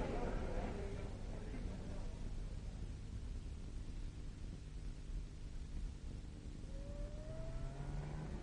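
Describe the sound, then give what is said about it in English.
A car engine turns over and settles into a steady rumble, then its pitch climbs as the car pulls away and gathers speed near the end. “Here, let me take your parcels. Thank you very much. Through here. My car's outside.”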